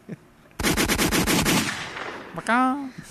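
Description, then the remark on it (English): A loud burst of AK rifle automatic gunfire, about nine rapid shots in roughly a second, trailing into a ringing decay, followed by a short, tonal, voice-like yell. “Oh, just get an AK, son.”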